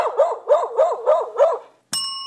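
A dog barks five times in a quick, even rhythm, fairly loud, then falls silent before a short bright ringing tone cuts in at the end.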